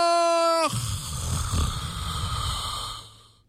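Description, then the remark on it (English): A brief tonal note cuts off into a long, rough, rumbling snore lasting a few seconds, loud, then trailing away; no one speaks. “Is that snoring or was that applause?”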